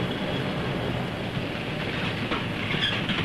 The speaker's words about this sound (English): Throughout the day, trains from the Sheffield Freight Terminal and elsewhere converge on Tinsley Marshalling Yard, the focal centre of Sheffield's new railway.